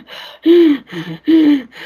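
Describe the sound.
A voice imitates a caveman's heavy, breathy panting after running back to his cave: four quick, rhythmic in-and-out breaths, alternating loud voiced gasps with softer exhales, and no words.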